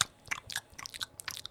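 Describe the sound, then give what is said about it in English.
A female dog chews on a bone: quiet, irregular crunching and scraping bites in quick succession, with no voices. “Well, now she just. Chews the shit out of it. She doesn't lick it as much now.”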